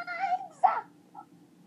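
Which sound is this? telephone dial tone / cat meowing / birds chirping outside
cat meowing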